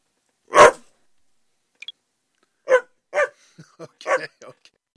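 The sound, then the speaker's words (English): A dog barks once loudly, then after a pause lets out a quick run of shorter barks and yips of varying strength, with brief silences in between. “hopped in there with a dog at the end.”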